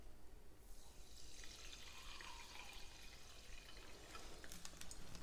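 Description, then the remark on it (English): Soda water pours steadily into a Collins glass holding ice cubes and a strained Campari mix, a soft continuous splash with a bright fizzing hiss that builds after the first half-second and carries on to the end. Quiet, with no talking. “And then to finish off, top up with some soda water.”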